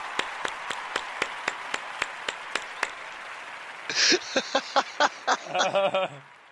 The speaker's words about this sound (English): but thank you very much for the very personal round of applause. I like that. Did you not hear that one? Oh, no, I just heard you clapping.